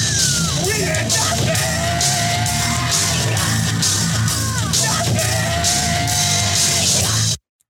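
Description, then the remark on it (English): A loud, dense heavy-rock jingle with pounding drums and distorted guitars, remixed with two drawn-out screams recorded earlier that day layered over the music, one near the start and one midway, before it cuts off abruptly. “I added the two screams from today into the nothing okay. jingle.”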